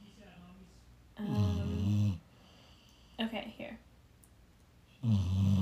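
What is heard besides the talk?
snoring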